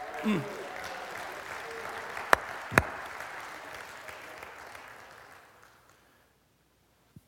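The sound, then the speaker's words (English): An audience claps together in praise during a morning church service, a dense, steady wash of applause for about six seconds, with a couple of sharp, louder claps standing out midway before it gradually dies away to silence. “Give me a hand clap of praise this morning.”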